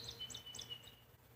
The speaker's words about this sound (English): All right, I think the birds were a little quiet there. That was unfortunate. I guess they heard me trying to make something happen and they shut the fuck up.